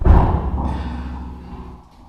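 A single heavy, boomy thud of a head banging against a microphone, loud, followed by a low rumbling ring that slowly fades over about two seconds.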